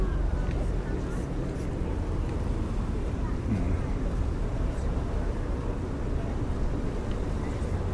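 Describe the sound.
A steady rumble of a small canoe-like boat under way on a canal, with continuous low engine and water noise throughout and indistinct voices murmuring faintly in the background.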